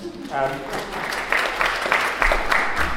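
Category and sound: crowd, audience applause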